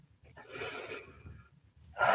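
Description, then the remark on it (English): A slow, deep cleansing breath of the Lamaze breathing technique: a soft airy inhale, then a brief pause before a louder, forceful exhale begins. No one speaks. “Just call it a cleansing breath, and then”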